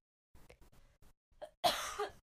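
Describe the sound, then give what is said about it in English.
A loud cough bursts out after a few softer throat sounds and breaths, the final hacking cough broad and harsh before it cuts off, as something caught in the throat. “I'm about to cough.”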